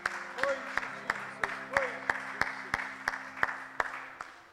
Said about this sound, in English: Why don't we just give the Lord a hand clap of praise right now. Hallelujah.